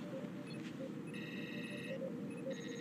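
A phone rings with a bright electronic ringtone, repeating in short bursts and one longer warbling tone, over a steady background hum. No one speaks.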